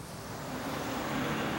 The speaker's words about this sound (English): So that's the hint of the bus in the beginning, which we'll see again later.